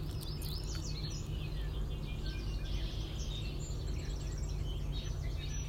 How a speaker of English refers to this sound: Do you hear those birds?